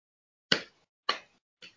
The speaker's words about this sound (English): I'm slow clapping because this is what I'm here for.